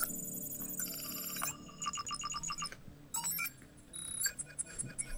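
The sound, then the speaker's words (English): A bright electronic phone ringtone plays alone, a quick melodic pattern of high chiming tones repeating in bursts over about five seconds, clear. “You hear like a noise coming from your phone.”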